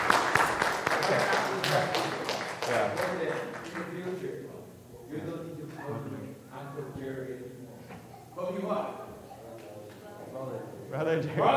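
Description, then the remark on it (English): A brief burst of applause, a round of applause given to God, many hands clapping in a quick, dense patter for a few seconds, then fading as several voices take over and keep talking. “Alright, let's give God a round of applause.”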